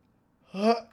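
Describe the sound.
A single short, voiced yawn from a person, rising briefly in pitch and fading out after about a third of a second, with near silence before it.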